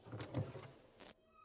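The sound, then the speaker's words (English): A few heavy clunks and scrapes as a broken desk chair, its piston broken, is set down, followed by a short rattling thud, then quiet room tone. “And sitting on my desk for a couple weeks, if you've happened to walk in, it's what's left of my desk chair.”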